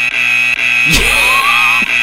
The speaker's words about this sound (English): And the alarm's going off and they run into the room and they're like, oh my God.